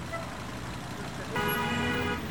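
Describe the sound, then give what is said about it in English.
A steady rumble of traffic in a big traffic jam in Ukraine, then a loud car horn blares for about a second, its sustained tone standing out clearly over the idling vehicles around it. “It's a big traffic jam”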